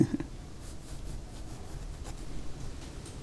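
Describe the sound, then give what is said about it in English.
Steady scratchy rasp of a pencil dragging across rough paper while drawing hair on a face, fairly quiet, with small bursts of stroke noise running continuously and no voices. “Well, this paper's really noisy.”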